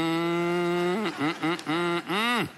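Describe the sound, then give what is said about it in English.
A person imitates a cow, giving a long sustained moo followed by several shorter, bending moos in quick succession, fairly loud, with no other talk. “Are you doing? Or just mooing?”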